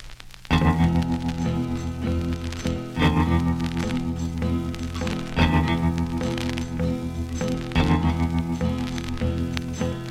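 A recorded song's intro plays loud and full, with sustained guitar-and-bass chords struck again every couple of seconds in a slow, steady rhythm. No one speaks.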